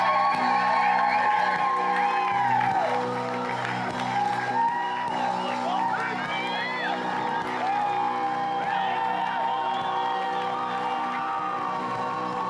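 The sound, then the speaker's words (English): An audience claps and cheers to welcome a speaker to the stage, a steady, dense roar with whoops and shouted voices rising above the applause, holding at an even loudness for about twelve seconds. “So this is your chance to clap and cheer, and then they're just going to go fire, fire, fire.”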